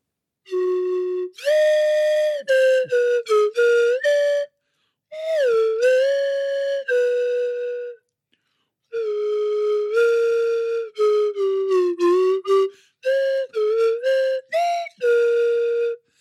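A lone whistled melody, clear and steady, with sustained notes and quick stepping phrases, pausing briefly between lines. No talking.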